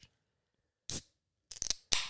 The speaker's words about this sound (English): Give him the ASMR. Give him the ASMR on the Coors can.